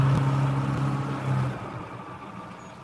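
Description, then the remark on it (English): An American mail truck's engine hums steadily with a low droning tone, then recedes and fades after a second or two as it drives past. No one speaks. “The mail truck is coming by.”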